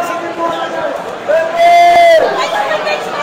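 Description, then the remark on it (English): Crowd yelling at a hockey game: a steady din of many voices swells into a loud, sustained collective shout for about a second before easing back to busy chatter. “What are they yelling for?”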